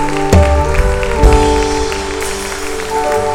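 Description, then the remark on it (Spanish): An audience claps steadily in a dense, crackling wash of applause over sustained musical tones, with a couple of low thumps early on. “¿Te atreves a dar otro aplauso al que reina, al que vive para siempre?”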